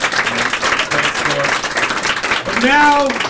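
An audience bursts into steady, dense applause, many hands clapping at once, with scattered shouts and a loud rising whoop of cheering near the end.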